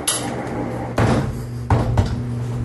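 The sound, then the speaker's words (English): A sliding bathroom door in a hotel room rolls along its track and bumps shut twice, with a brief rumble and two solid knocks against a low background hum. No one speaks. “So if you're wondering how this does open and close, it is a sliding door system.”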